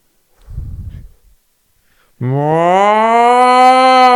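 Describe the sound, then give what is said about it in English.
A person imitates a Bigfoot call a little away from the microphone: a brief low huff, a pause, then a loud, sustained moaning howl that slowly rises in pitch, sounding almost like a cow's moo, cut off abruptly. “I mean, could you give us a sample of the Bigfoot call?”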